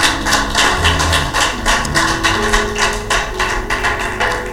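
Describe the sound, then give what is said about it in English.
A crowd claps to the Lord at a preacher's call, in a steady, quick rhythm, sharp hand slaps repeating about three times a second, with sustained low musical tones underneath and no talking. “Slap your hands together to the Lord. Slap them.”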